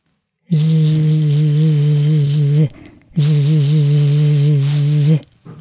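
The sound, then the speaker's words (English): A human voice imitates a cicada's weakening autumn song, sung with less and less effort as its life nears the end: two long, steady, buzzy drones of about two seconds each, separated by a brief pause, fairly loud with a hissy edge. “When autumn comes, they sing with less and less effort as their life is approaching the end, like this.”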